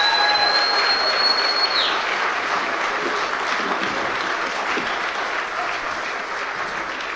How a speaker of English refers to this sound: Give them another round of applause, huh? Fantastic.